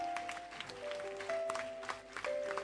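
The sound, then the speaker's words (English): A crowd claps for the Lord in a dense, continuous patter, while sustained organ-like notes hold and shift pitch underneath. No one speaks. “Let's give the Lord a super clap of it.”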